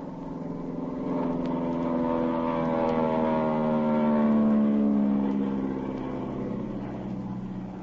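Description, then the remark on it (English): A steady, droning airplane engine passes overhead as the plane flies over a boat on the ocean, its harmonic hum swelling to a peak midway and then easing off slightly as it continues. No one speaks. “I'm going to fly over them.”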